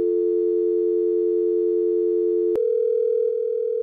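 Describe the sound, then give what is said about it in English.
A steady, continuous telephone line tone of an overseas call to radio presenter Maz Compton holds for a couple of seconds, then a click cuts to a different, slightly higher electronic tone. No one speaks. “Sounds like we're calling overseas.”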